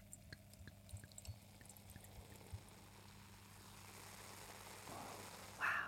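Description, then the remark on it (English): Nieva York wine, 2021 vintage, pours steadily into glasses with soft gurgles and small splashes, fairly quiet, rising in pitch as a glass fills, then a short bright ring at the end. No one speaks. “Dear listener, stop the podcast, go to the Wine Monopoly, buy yourself a bottle of Nieva York, and then you can drink with us.”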